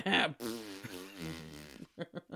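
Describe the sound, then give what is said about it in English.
A voice imitates weird, unholy farting noises meant as a noise only the devil could make: a breathy blast, then a long wobbling buzzy drone, ending in three short sputtering bursts. “So it could just sound like a weird doo-doo-doo-doo-doo. I don't know what the devil sounds like. Weird, unholy farting noises.”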